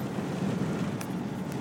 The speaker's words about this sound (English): Hey, I'm in the car driving.